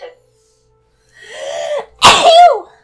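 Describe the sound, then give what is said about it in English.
A single loud sneeze: a rising drawn-in 'ah' builds for under a second, then breaks into a sharp explosive burst with a short voiced tail. “Bless you.”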